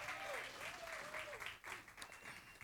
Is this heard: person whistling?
no